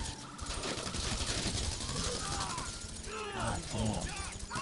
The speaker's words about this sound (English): I just walked into your gunfire. Oh, and because there's no friendly fire turned on right now because we're not in the same team.